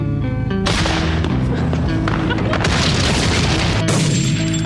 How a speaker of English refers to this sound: Does anyone have gunshots to put over this?